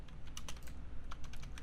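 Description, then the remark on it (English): Rapid clicking of computer keyboard keys as someone types, a busy stream of sharp taps in uneven bursts, moderately quiet, with no voices. “D-Pain is still typing me secrets. I can hear it.”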